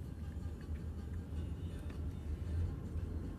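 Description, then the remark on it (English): A steady, low engine rumble from a car slowed to a crawl while following a tractor, with a continuous droning hum and faint road noise and no break throughout. “I am literally slowed to a crawl and following a tractor here.”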